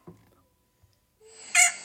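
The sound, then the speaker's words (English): A short, shrill rooster crow rises out of near silence, loud, after a couple of faint taps and clicks, as a person touches the rooster on the back, ending in a bright harmonic squawk. “Brock just touched the rooster.”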